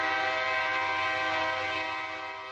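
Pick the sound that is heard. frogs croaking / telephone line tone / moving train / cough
moving train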